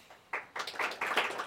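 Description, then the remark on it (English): A small group gives a light, scattered round of polite golf-clap applause to voice approval of an answer, soft overlapping claps in an uneven patter that starts after a brief pause and continues to the end. “That was kind of that polite thing I talked about before. Golf clap.”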